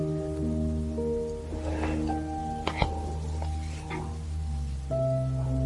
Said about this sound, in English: the radiators are clicking a bit because I've turned the heating off, so you may hear the occasional light clang of the radiators.